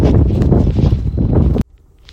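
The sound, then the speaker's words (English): Loud, blustery wind buffets the microphone in a heavy, fluctuating low roar for about a second and a half, then cuts off abruptly into near silence. No one speaks. “Sorry, I had to pause there for a second. The wind picked up.”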